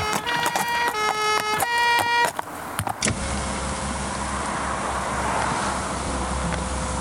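Rhythmic clopping with a ringing, tonal jingle gives way to a steady, loud rolling rumble of a horse-drawn cart moving along a road, in a horse-and-cart advert on The Nothing to Do with Anything show. No one speaks.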